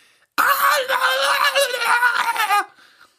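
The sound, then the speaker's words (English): A person imitates a bobcat's scream with one loud, shrill, wavering cry held for about two seconds. It is harsh, then cuts off abruptly into near silence. “A scream that sounded very similar to that of a bobcat.”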